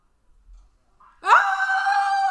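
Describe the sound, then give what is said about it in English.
After a near-silent moment, an old woman suddenly lets out a loud, shrill scream that holds steady for about a second, piercing, with no talking around it. “She's screaming again.”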